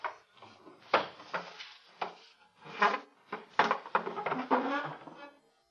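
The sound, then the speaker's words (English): A chair is dragged across a hard floor up to a door in a series of irregular scraping bursts and wooden bumps, fairly loud, with brief pauses between pushes. “bring your chair to the door. Oh, he's doing it.”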